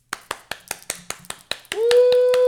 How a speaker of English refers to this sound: Everyone, let's give a round of applause for JoJo.